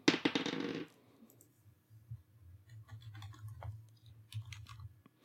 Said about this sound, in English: I don't remember how that works, but I did roll a dice.